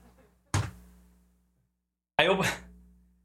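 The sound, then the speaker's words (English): A door is opened to let a dog out and then shut: a sharp wooden clunk, a short pause of near silence, then a second heavier bang as it swings shut, with a faint murmur beforehand. “I opened the door and he started to run back.”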